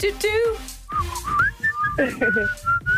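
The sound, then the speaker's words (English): A shrill, piercing whistled melody of sustained high notes with quick pitch slides, loud, with some chatter and laughter underneath. “Gorgeous piercing whistle.”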